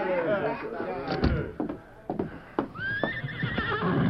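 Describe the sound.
A horse neighs and whinnies in rising, wavering calls, mixed with sharp thumps and clatter like hooves, over a busy background of voices and movement.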